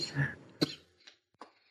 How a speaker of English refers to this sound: Still hanging on to that cough. Yes. Yes, I am.